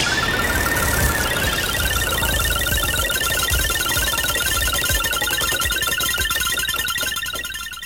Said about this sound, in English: Prairie chickens.